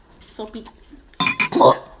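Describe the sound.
Spoons clink against soup bowls during a meal, a few quick, bright metallic taps in a short burst, mixed with voices and soft mouth sounds.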